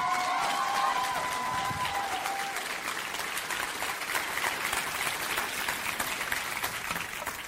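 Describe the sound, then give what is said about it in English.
A large standing audience applauds the speaker's wife steadily for several seconds, a dense, even patter of clapping, with a few high cheers or whistles rising over it at the start. “Everyone get on your feet and give a big round of applause for my wife,”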